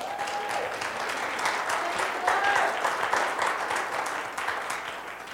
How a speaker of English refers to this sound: Let's give God a hand clap today.